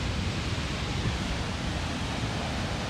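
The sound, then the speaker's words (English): A steady, continuous wash of ocean waves, surf rolling in without distinct breaks, fairly quiet and even throughout, with no voices present. “Like, just looking at these waves, I'm reminded of just how vast black folk are.”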